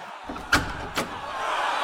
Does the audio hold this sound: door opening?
yes